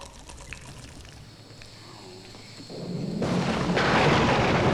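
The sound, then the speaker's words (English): A thunderstorm builds from a quiet, hissy backdrop into a loud, broad roar of heavy rain and rumbling thunder that swells over the last couple of seconds, with no voices. “Conveniently placed thunderstorm.”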